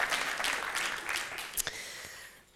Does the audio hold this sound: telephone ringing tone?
no